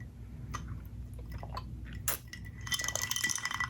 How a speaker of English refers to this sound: I need another sip.